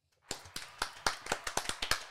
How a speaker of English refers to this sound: He is the person that made me. So everybody, let's give him an applause.